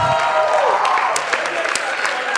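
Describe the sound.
A crowd at Centro Church applauds steadily during a Centro Youth takeover as a preacher is invited up, a dense, loud wash of many hands clapping at once with sharper individual claps popping out, and a few voices faintly mixed in.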